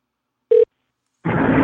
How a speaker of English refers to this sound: And let's get him on the phone call. I'll mark the time to cut the phone ringing out of the conversation.